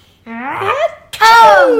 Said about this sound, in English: I had just grabbed the doorknob when I felt another sneeze coming on. I huffed and I snuffed and I tried to cover my mouth, but I sneezed a great sneeze.